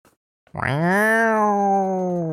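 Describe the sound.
A person imitates a mountain lion's snarling growl: one loud, sustained, throaty vocal snarl that starts abruptly after a brief pause and holds steady for about two seconds.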